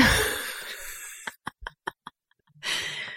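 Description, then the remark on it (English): A run of about five quick, short sniffs in a row, set between longer, breathy rushes of air at the start and end. No one speaks. “Sniff, sniff.”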